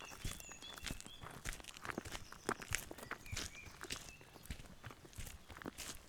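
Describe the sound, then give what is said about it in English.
Quiet, steady footsteps of two people crunch along at a walking pace, the steps overlapping, with faint high chirps scattered in the background and no voices. “Each step the intrepid pair take towards Twilight Ridge, the air noticeably thickens, filling with a charged energy that neither can explain, while awkward, unspoken words between them fan a tension that pulses with the rhythm of their footsteps.”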